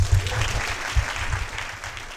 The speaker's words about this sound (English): So please, a warm round of applause for Michael Enright.